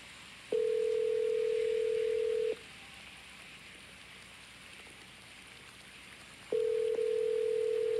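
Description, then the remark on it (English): A phone call's ringing tone: a steady, fairly loud beep lasts about two seconds, then a long pause before it sounds again, over a soft hiss with no voices. “We gotta get this phone connection together. Mac, call Ani.”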